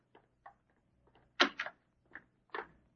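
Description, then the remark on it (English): A studio door across the hall opens: a few small clicks and rattles of the handle, then a louder thump and scrape as it swings, with a final knock. No one speaks. “That studio across the hall has a sign on the door that says Lucky Strike.”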